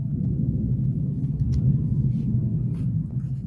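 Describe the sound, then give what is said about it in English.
A deep, continuous thunder rumble from a huge thunderstorm in Georgia rolls steadily through the whole moment, heavy and low, with no voices and only faint scattered ticks above it. “For context, for anyone watching this weeks in the future, in Georgia right now, huge thunderstorm, a whole day.”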